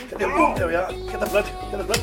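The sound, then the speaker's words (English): Two sharp slaps land about a second apart during a cardio warm-up, each a quick smack of skin on skin, while a voice keeps making sounds underneath. “I'm just gonna a couple of slaps here.”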